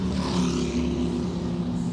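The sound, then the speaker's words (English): A steady, loud engine drone with strong low harmonics as a flurry of race cars, including the WeatherTech Mercedes, pull away off the pit apron and head out after a GTD pit stop phase, continuous with no pauses and no voices. “And now we've got a flurry of cars out off the apron and heading out.”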